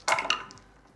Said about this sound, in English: I heard a lot of dice rumbling from the other side of the room.